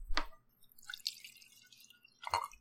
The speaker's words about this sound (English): Let's pour this scotch. Since we've been drinking it for a month, the cork didn't pop as well.